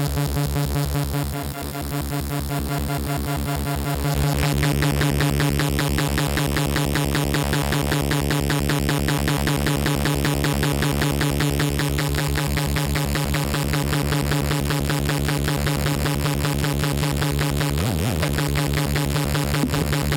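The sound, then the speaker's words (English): A loud, buzzy synthesizer drone chopped by a rapid, regular on-off pulse from a square-wave LFO fed into the oscillators, giving a harsh, throbbing texture that holds steady for about twenty seconds with no voices. “It's been fed right now a square wave.”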